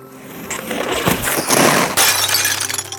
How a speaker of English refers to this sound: So he did, and together, he and I crashed into a large mirror and made history.